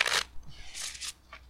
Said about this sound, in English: Did you shuffle Blackbird? Oh no, this one's all fucked up. Bam, that's been shuffled.